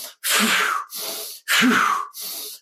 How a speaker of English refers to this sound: So no matter where you're at, just change your breathing. And if you're struggling with anxiety, do a couple of big, forceful breaths.